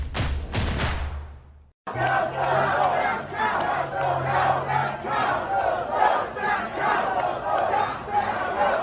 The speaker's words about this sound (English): Ah yes, who could forget the near simultaneous chanting from the crowds of Trump supporters, some saying to stop the count and others saying that we needed to count the votes.